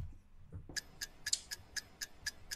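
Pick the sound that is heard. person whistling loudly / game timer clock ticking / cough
game timer clock ticking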